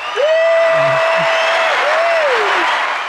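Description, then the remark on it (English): An applause sound effect: a dense, steady burst of clapping fills about three seconds, with a long sustained whoop sliding over it and a couple of brief low vocal sounds early on. “I'm going to put my claps on.”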